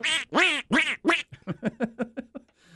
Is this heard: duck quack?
yes